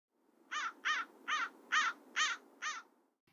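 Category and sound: bird, american crow cawing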